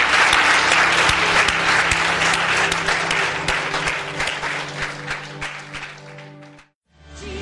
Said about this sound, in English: Come on, let's stand to our feet and give him some applause. Come on, can we do that? Stand up. Stand up. Come on, if you can stand.